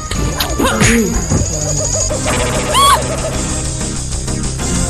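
A loud, shrill Mortal Kombat video game shriek from a "nudality" move swoops downward in pitch, then a second high, wavering cry follows over a dense, noisy game soundtrack with scattered crashes.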